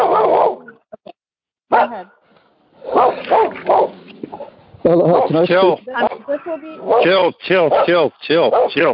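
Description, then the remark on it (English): A dog barks and yelps in a series of loud, uneven bursts, with short pauses between them and a few whiny, drawn-out sounds mixed in. “Chill. Beautiful dog.”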